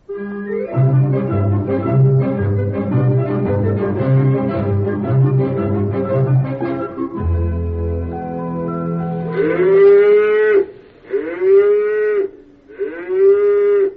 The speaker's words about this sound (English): Well, darling, they're just cows. They're not bulls. They won't hurt her.